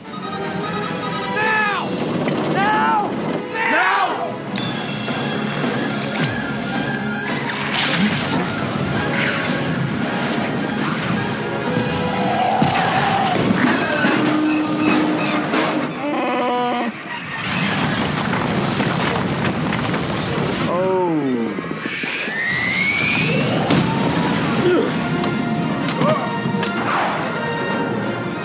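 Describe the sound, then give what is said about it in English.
A sci-fi coaxium explosion reaction inside the Falcon spaceship in Star Wars: sustained loud rumbling and crashing blasts layered with whining, sweeping tones that rise and fall, continuing without a break for the whole clip. “This is an example of a little explosion that has a big impact.”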